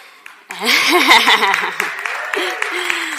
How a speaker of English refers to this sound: Thank you, guys. They're clapping because last week we just announced that my title changed from community director to associate pastor.